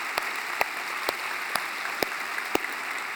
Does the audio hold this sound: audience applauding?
yes